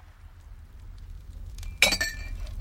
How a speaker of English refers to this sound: Inside the conference hall, Radon pours wine for Metz of the First Blood.